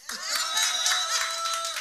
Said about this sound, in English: West Philly, applause.